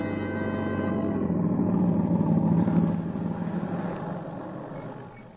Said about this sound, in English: It is early evening of the same day. Tom Stevens and Helen Benson drive up to the boarding house after their picnic, quite unaware of the dark squad car parked at the curb a few feet ahead.